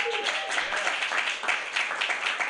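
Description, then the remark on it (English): An audience at a comedy show in San Francisco applauds steadily before the show, many hands clapping in a dense, continuous patter with a faint murmur of voices underneath. “So round of applause for the great show that you're about to see.”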